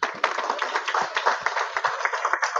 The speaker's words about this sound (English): All right. Come on, give them one more hand.